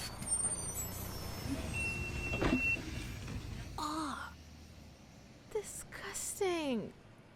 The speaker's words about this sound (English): Oh, bus incoming.